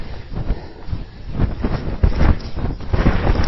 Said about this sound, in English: Oh man, this is tough now. So steep, so windy. Jesus, this is climbing now.